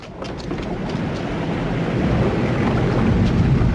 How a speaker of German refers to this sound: What's that? Listen. Sounds like a tidal wave. Water pressure. It's increasing.